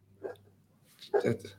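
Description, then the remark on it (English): A dog gives a couple of sharp, excited barks, a quick yip followed by a louder cluster, over a steady low hum. “Dog's going crazy.”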